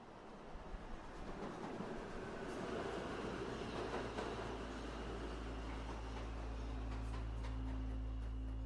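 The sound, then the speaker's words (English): A train rumbles and clatters as it pulls into a station, a steady heavy roar with faint metallic clicks and a low droning hum building toward the end as it rolls in and slows. No one speaks. “The train pulled into the station.”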